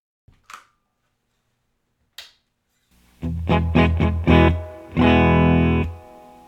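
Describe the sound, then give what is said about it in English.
After two faint clicks, an amplified electric guitar plays gritty, dry-toned chords through an amp miked with a Sennheiser E609, with a touch of the amp's own reverb: a run of short stabbed strums, then a longer ringing chord. “We'll listen to the dry sound first, and then we'll kick it on and see where it goes.”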